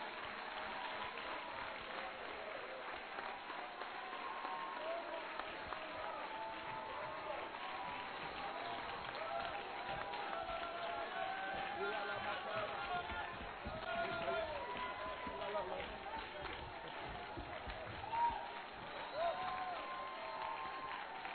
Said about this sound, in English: Let's clap our hands and thank the Lord right now.